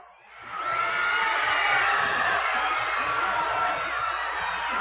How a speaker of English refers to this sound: The crowd is cheering. I can't see what it's about yet. Here comes the Colonel. That's what the cheer was for. Here comes Colonel Robley.